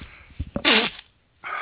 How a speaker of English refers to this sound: And you know what? I'm going to sneeze. I apologize.